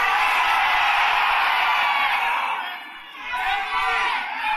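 A large audience shouts all at once, many voices yelling the names of their favorite dispensaries or the ones they work for over each other in a loud, jumbled roar that dips briefly near the end before swelling again.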